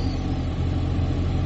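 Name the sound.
car interior rumble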